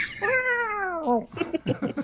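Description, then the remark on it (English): A cat lets out one long, drawn-out meow, its pitch sliding slowly downward, followed by a few quick, softer chirps and rustles. “Your cat is adorable.”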